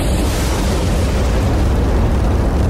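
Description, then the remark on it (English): A lightning strike with thunder: a loud, continuous roar of deep rumbling that holds steady for a few seconds, heavy in the bass with a broad hiss on top and no voices. “And that's why when lightning hits things, it can cause so much damage.”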